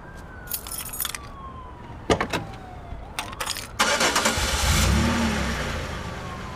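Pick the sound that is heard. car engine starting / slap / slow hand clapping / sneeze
car engine starting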